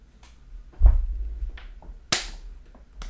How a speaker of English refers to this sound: That was a slap bump, by the way. Jiu-jitsu shit.